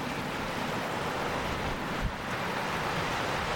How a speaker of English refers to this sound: Just get a lovely, the soothing sound of the sea here. Just enjoy that mindful moment. Just, it's not really battering the shore,